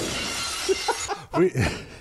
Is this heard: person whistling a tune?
no